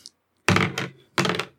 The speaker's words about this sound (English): All right. 11 is your target number. I'm going to roll 3 dice and add 1.